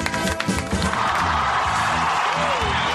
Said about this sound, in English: We can applaud. The Todd Glass Show. All right. That's right. We don't do a shitty little applause. We play it up big.